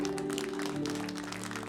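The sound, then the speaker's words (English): An audience claps for the Lord Jesus steadily in a dense, continuous patter, mixed with sustained low organ-like tones that hold throughout the short stretch at an even, moderate loudness. “Clap for the Lord Jesus.”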